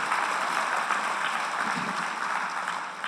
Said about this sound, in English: Hoot, holler, clap, whistle, whatever it is you do best, do it this morning. This, yeah, you can clap. There we go.